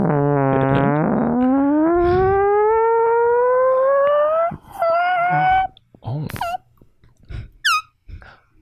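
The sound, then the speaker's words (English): A voice imitates a fart with a long, buzzy, wailing tone that slowly rises in pitch for several seconds, then breaks into a few short squeaky bursts. “Can you do a good fart? Can you do his fart”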